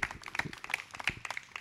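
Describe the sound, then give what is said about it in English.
Brief church audience clapping for God: a quick, irregular patter of many hands at a fairly soft level, with no talking over it. “Clap for God, not for anyone else.”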